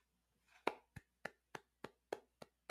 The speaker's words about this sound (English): Are you clapping? Yeah. No.